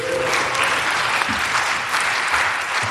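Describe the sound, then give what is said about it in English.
A dense burst of audience clapping fills the whole stretch, steady and loud with many overlapping hand claps blending into a broad wash of applause. “That means you clap too.”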